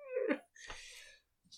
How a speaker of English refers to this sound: The cat's rolling on the floor looking at me going,